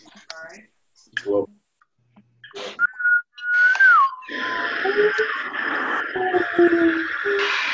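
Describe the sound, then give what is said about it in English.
A chorus of breathy wind whistles sounds together, several wavering tones rising and falling over a rushing, airy wash after a few brief scattered clicks and murmurs. “Everyone get their wind whistles.”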